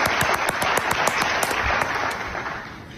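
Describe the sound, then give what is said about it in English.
A large crowd cheers and applauds loudly, dense clapping with sharp individual claps popping through a steady roar, fading slightly toward the end. “It's like a WrestleMania crowd.”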